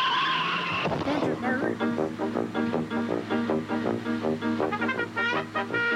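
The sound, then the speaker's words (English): Tires screech sharply for about a second, then an engine revs and whines up and down in pitch almost continuously, loud, as a woman drives a car wildly. “Driving a car all crazy.”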